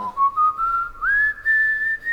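A person whistles a short tune, a few clear sustained notes that glide and step upward in pitch, close and fairly loud, with no talking.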